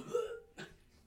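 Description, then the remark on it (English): A person fakes a wheezy old man's cough: a croaky, voiced rasp followed by one short, harsh burst, then quiet. “I'll do an old man cough.”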